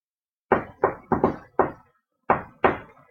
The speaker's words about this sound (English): Can we do, like, a real cool guy knock on the door? Yeah, how does it sound?